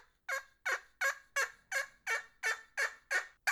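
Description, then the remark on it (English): A turkey game call imitates a sleepy old hen's quiet tree call: about ten short, raspy yelping notes in a steady, even rhythm, clear, with no voices. “Sleepy old hen right there. Yeah, it's just like a tree call.”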